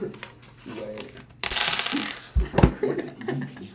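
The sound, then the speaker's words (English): Dice clatter and rattle across a tabletop in a loud burst, with a few sharp knocks as they settle, while people murmur softly in the background. “He destroyed my dice.”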